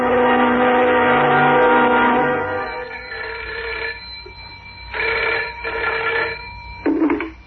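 A telephone rings in a steady, buzzing tone, first as one long sustained ring and then as several shorter repeated bursts, fairly loud, with no voices. The ringing is a phone call being made to Derek's parents.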